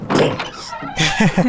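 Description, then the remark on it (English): A large door slides open with a broad, rushing scrape lasting about a second, then voices come in briefly over the end of it. “being done, do you head through the large doors, or...?”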